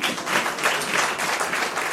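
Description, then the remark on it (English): A church audience and worship team clap hands together during a service in a steady, dense wash of applause, loud and continuous with overlapping claps forming a broad rhythmic texture and no talking over it. “And the church can clap hands as well.”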